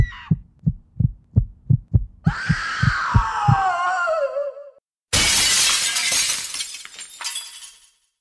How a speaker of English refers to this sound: With the piercing shatter of a glass, I hear it.